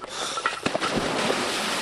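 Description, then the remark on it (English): A short cluster of sharp splashes as a diver in a wetsuit steps off a dive platform into the cold water of Lake Champlain, followed by a steady rushing, bubbling wash that fills the rest of the moment. No one speaks. “And a big step out.”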